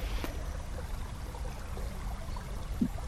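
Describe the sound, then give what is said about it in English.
A river flows with a steady, unbroken rush of water, a soft, even wash of sound heard alone with no voices throughout. “The river is a place for me that is sanctuary, and it's sound that my mind can cope with.”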